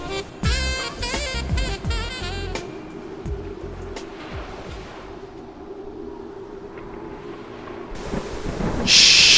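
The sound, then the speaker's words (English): A thunderstorm sound effect rumbles low and steady with broad rushing noise, following a short burst of bright musical tones at the start, then swells into a louder hiss near the end, opening the radio show Gospel Quiet Storm. “A storm is brewing.”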